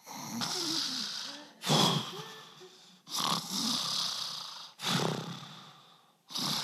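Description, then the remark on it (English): A sleeping person snores steadily, with about five rasping breaths arriving in a regular rhythm, each a rough, low rumble mixed with airy hiss. No one speaks. “But I think that sound of sleep is something that you should lean into.”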